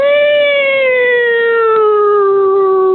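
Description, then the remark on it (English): A single loud, sustained vocal tone slides slowly downward in pitch for about three seconds, a person imitating an emergency vehicle siren with a drawn-out wail. No other sounds or talk. “Emergency vehicle sounds, you know, like sirens, like”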